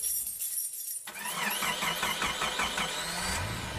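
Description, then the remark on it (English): A car engine cranks and turns over after a brief quiet moment, with a rapid pulsing rhythm that settles into a steady running hum, as the driver sets off for the gym at 5:15 in the morning. Fairly loud, no voices. “I get dressed, chug some water, and I get in my car and head over to the gym.”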